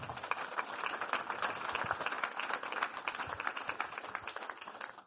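An audience applauds a guest speaker at the end of an evening talk of just over an hour, many hands clapping in a dense, steady crackle that holds for about five seconds before easing off slightly at the end; no one speaks.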